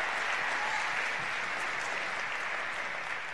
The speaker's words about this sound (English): Somebody give God a big hand clap. And a scream and a shout.